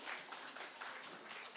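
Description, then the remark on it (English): A group claps for a boy in a steady, dense burst of applause lasting a moment or two, a bright crackling patter of many hands at an even, moderate level with no voices over it. “Should we give him a big clap?”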